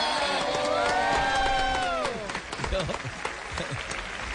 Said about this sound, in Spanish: Recibamos con un fuerte aplauso al señor Diego León Hoyos.